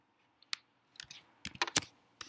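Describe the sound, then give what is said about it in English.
A short, irregular run of crisp clicking taps, like keys being struck on a computer keyboard while typing a guessed NFL player's name, fairly quiet, with no voices. “Cooper, I almost started typing in Pooper.”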